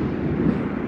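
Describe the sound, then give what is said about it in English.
A deep, steady rumble of thunder rolls through the whole moment, loud and low-pitched, with no sharp crack and no voices. “I'm telling you, I'm getting a storm.”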